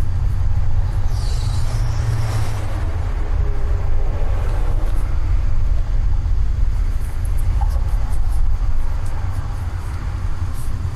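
A car rolls along with a steady low rumble and road noise that holds constant throughout, with no voices and no distinct sounds standing out above the drone.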